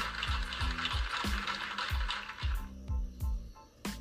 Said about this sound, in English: could hear those claps, that applause for those people that were in the store yesterday.